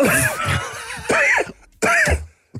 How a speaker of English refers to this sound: There was a point where he was performing and coughing at the same time.